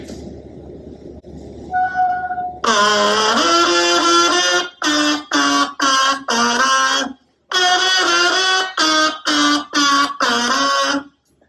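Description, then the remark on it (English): An electric kazoo from Kazoobie Kazoo, fitted with a tiny microphone in its top and plugged into an amplifier, blares with a loud, buzzy, nasal tone: a soft hum, then a long held note that bends upward, followed by about eight short, choppy blasts. “Fits right into the top of your kazoo. And now you have the electric kazoo.”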